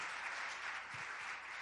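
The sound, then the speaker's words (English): A crowd claps steadily to thank a man for building a stage, a dense, even wash of many hands with no pauses and no voices rising above it, sustained at a consistent moderate level throughout. “So I want to give him a round of applause, and youth especially.”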